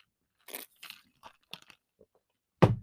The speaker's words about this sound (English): I'm going to sip some coffee because my mouth is dry.